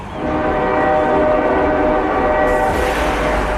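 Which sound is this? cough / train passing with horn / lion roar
train passing with horn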